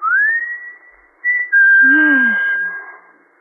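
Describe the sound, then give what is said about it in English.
A man whistles a signal: a rising note held steady, a short chirp, then a long sustained tone that slides downward at the end, loud with no talking. “When he used to roll to the bottom of the hill and wait for you, and you could stand in the orchard until you heard him whistle.”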